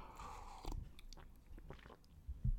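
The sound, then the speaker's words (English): A quiet sip from a drink: a brief slurp followed by soft wet mouth noises and a swallow, with a faint bump or clunk at the end. “Let me get a little sip.”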